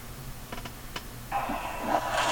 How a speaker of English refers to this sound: Trying to type some shit into YouTube. It's harder than you think. Typing shit in YouTube.